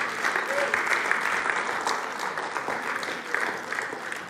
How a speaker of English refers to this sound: You ought to clap because I'm talking about you.